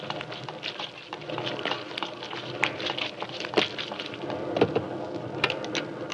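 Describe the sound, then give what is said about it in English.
Heavy rain pours down steadily in a dense, hissing wash, with sharp spattering drops and occasional low rumbles beneath, fairly loud throughout. “Good Lord, it's pelting with rain.”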